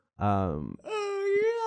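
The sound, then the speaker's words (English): A drawn-out voiced yawn: a loud, breathy tone that slides downward, breaks briefly, then settles into a long, steady higher-pitched moan that holds to the end. “Sorry, guys, I'm yawning.”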